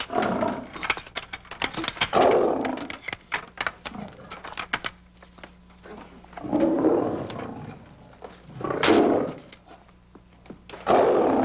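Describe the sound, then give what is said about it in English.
A big cat roars and growls in several loud, rasping swells separated by lower, rumbling growls, with a crackly, gritty texture throughout and no talking. “Why is this cat in here?”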